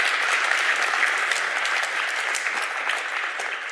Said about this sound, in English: So we give them one more round of applause, folks. It's great having you folks here.